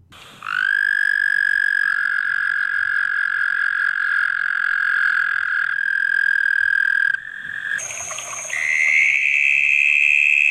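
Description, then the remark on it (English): Frogs of a kind harvested by Peruvian and Bolivian locals croak in a loud, continuous buzzing trill that holds steady for several seconds, then breaks and shifts into a higher-pitched call near the end, with no voices. “it's now illegal to harvest these frogs”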